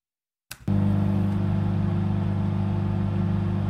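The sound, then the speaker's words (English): After a moment of silence and a brief starter crank, the engine of a 2004 Ford Ranger pickup in horrible condition, needing a new fan belt, catches and settles into a steady, low, droning idle that holds evenly to the end. “That was a Ford Ranger.”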